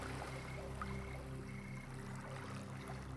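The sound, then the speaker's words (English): Small waves lap gently on a calm sea by a beach at night, a soft, continuous watery wash heard quietly and without talk, with a faint steady low drone underneath. “and the moon is high up, and the sky is not dark but almost purple, and the sea itself is calm with very, very little waves that makes this lovely sound.”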